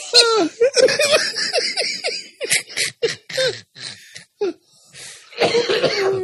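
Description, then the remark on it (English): Loud laughter breaks into a rough run of coughs, a dozen or so sharp bursts in uneven rhythm, with giggly voiced gasps between them and a final wheezy laugh-cough. “I'm going to start having a coughing fit.”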